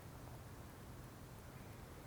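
A steady, soft hiss of rain falling, continuous and even throughout with no distinct drops standing out, quiet, with no voices.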